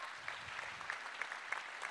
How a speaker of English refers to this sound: Let's give her a round of applause, okay?